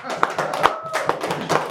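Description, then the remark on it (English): An audience claps for a Hall of Famer joining a panel table. A few sharp hand claps land in a steady rhythm, roughly every half second, moderately loud, more like a small group clapping than a full crowd's roar. “Can we get a round of applause in here for Hall of Famer?”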